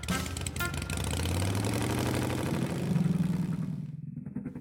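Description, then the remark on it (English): A small scooter engine revs up loudly, its pitch climbing as it pulls away down a scooter path, then the buzzing motor quickly fades away. No one speaks. “Then she took off down the scooter path that led to her Grammy's house.”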